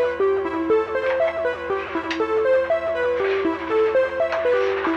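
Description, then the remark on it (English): A strobe-light signal, clock-divided by two to half speed, drives a steady, loud electronic pattern: rhythmic ticking pulses under buzzy synth tones that step between a few pitches, with no voices. “Okay, so that's half the speed. That sound is the of the strobe light.”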